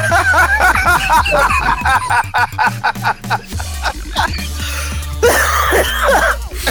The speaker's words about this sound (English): Oh, a coughing laugh.